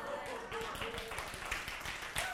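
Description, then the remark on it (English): Scattered, uneven clapping from only the women in an audience, the men not joining in, sharp irregular claps continuing for a couple of seconds over a low murmur of voices. “How come it's only girls clap and all the guys are like, oh, no.”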